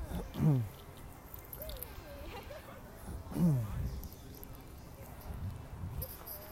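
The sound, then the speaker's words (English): Two dogs playing together, one let off its leash, with two short, sliding growl-like yelps about three seconds apart and soft scuffling and movement in between. “My dog usually doesn't play very much.”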